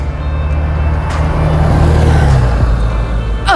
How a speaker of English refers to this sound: That was my bus. Sorry, I gotta go.